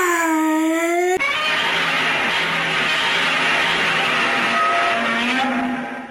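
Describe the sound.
A voice imitates Godzilla's roar: a brief high, shrieking wail that slides downward, then a long, harsh, grinding bellow lasting several seconds before trailing off. No one speaks.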